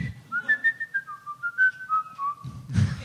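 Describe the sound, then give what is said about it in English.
A person attempts to whistle a short, wavering tune, the notes sliding unevenly, before it breaks off into a burst of breathy noise at the end. “I suddenly thought, you know what? I wonder if I could whistle.”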